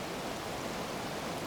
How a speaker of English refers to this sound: Even at this time of year, the depths of winter in Scotland, there's still an abundance of life amongst all of the death. And now we're coming to this tiny little stream that's leading into the river.